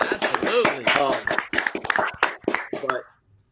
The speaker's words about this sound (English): In fact, my uncle is actually in remission now for leukemia, so let's get a round of applause for my uncle.